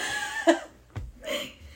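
A person fakes a burp with their voice, giving a short throaty croak followed by a brief rough, belch-like grunt, fairly loud, with no speech around it.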